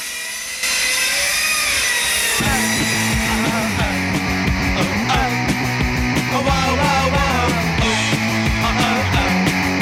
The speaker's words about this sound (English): It's got a great opening with the circular saw sound